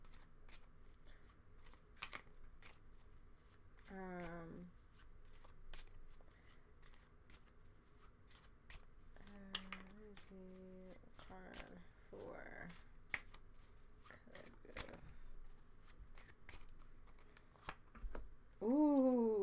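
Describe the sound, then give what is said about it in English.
Playing cards being shuffled and a card pulled for the collective, with repeated crisp flicks and riffling snaps scattered throughout, plus a few brief bursts of voice in between. “I just pulled a card for the collective.”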